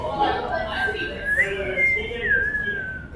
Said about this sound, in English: Speaking of which, I'm just going to pull my whistle out and blow it.